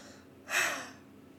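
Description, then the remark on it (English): A single breathy yawn, an airy rush of breath that swells quickly and fades over about half a second, with no talking around it. “Oh, man, just yawn after yawn.”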